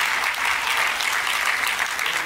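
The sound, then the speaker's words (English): An audience applauds with steady, dense hand clapping that holds an even level throughout, a sparse, half-hearted round of claps with no voices over it. “Oh, thank you for that weak hand clap, that weak, weak hand clap.”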